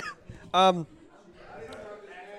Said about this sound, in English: I apologize. I was eating and now coughing.